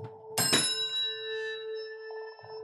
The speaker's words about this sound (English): Should we make a Chinese chord with our bells? Is that, okay, here we go. Here we go.